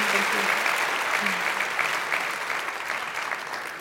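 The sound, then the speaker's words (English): An evening event's audience applauds steadily, many hands clapping in a dense, continuous wash that holds loud and even for several seconds before easing slightly toward the end. “Please, please, please give them a huge round of applause.”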